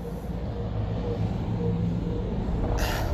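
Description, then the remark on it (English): A truck pulling in, its heavy engine rumbling low and steady, with a short sharp hiss of air near the end. “man, another truck's coming in.”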